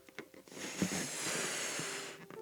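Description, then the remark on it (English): A long, steady rush of breath blown hard into a stretched balloon to inflate it, fairly loud, lasting about two seconds, with a few short huffs of air just before and after. “And there's a technique to inflate balloons. You see, you stretch them. And then you blow.”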